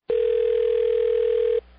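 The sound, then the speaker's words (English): A single steady electronic ringing tone on a phone line, heard by the caller as a prank phone call to a man goes through, holds for about a second and a half and then cuts off. No voices. “And here's that phone call.”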